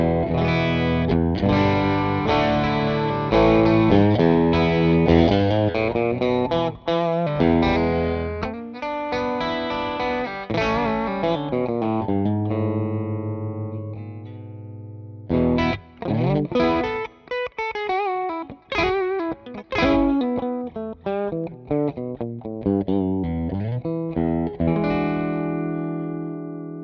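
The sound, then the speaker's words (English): An electric guitar, a Strat on its bridge pickup, plays through a Clarksdale overdrive pedal, its chords and notes carrying a light, gritty edge. The playing runs steadily, stops briefly midway, then picks back up with quicker phrases. “But I like how with the Clarksdale, you can add just a touch of grind,”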